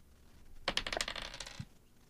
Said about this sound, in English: Ooh, the dice are loving the 70s today.